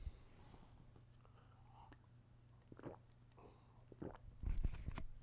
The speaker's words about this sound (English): I'm taking a sip of water.